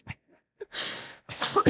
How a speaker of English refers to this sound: Sorry if you hear some coughs.